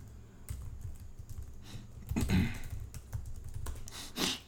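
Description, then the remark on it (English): Rapid, uneven clatter of keys on a computer keyboard, fairly quiet, with a denser burst of typing in the middle and a final louder flurry of keystrokes. “Go ahead and put, since you're typing,”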